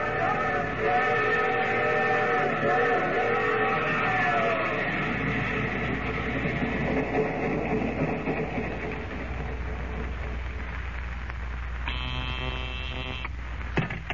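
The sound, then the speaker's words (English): A train rumbles steadily and slows, with a sustained screeching tone early on, then a short, bright whistle blast near the end. No one speaks. “Well, the train halted, then.”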